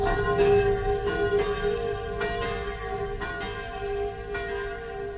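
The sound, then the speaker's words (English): Village church bells in Normandy peal steadily to celebrate liberation, their overlapping strikes ringing out every second or so with long, shimmering tones that sustain and blend together, loud, with no voices. “the bells now, even though the big one has been smashed by the Germans, to let you know that the people of Normandy are celebrating their liberation, that church bells are ringing, and the villagers are going to mass to give thanks for their freedom.”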